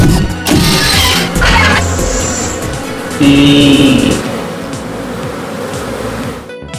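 A dense swarm of bees in a bee yard buzzes loudly and continuously, the droning hum rising and wavering as individual insects pass near, with no voices over it.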